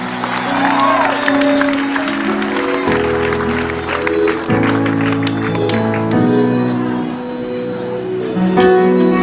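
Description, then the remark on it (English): A church audience claps steadily throughout, giving Jesus a hand of praise, a dense wash of applause mixed with a few cheers, over loud sustained organ or keyboard chords that shift every few seconds. “Give Jesus a hand of praise, somebody.”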